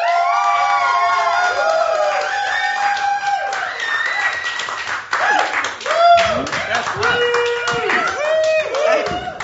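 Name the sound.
crowd cheering and clapping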